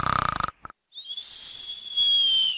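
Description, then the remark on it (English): A voice imitates snoring: a short, buzzing rattle on the inhale, then a long, high whistling exhale that trails on to the end. “Snoring is a very noisy breathing while you're sleeping.”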